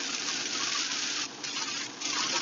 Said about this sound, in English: Oh, it is pouring, ladies and gentlemen.